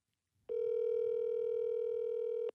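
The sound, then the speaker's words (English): A single ringback tone from a phone call to a friend: one steady, buzzy electronic tone that holds for about two seconds and then cuts off, clear and alone with no voices. “He usually picks up on the second.”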